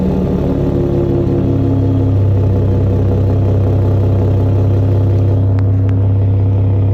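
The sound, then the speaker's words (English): A new Raptor pickup truck's V6 engine rumbles loudly, its deep throaty drone shifting pitch early as the revs change, then settling into a steady low hum with no talking. “Why does it sound diesel-y to me? Because it's crazy V6?”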